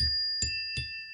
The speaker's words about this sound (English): That's my book bell. Oh my gosh. I think I just created something new. My book bell.